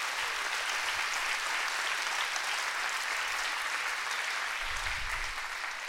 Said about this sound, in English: Stand to your feet and clap your hands all over the house. Hey, it's a worthy night.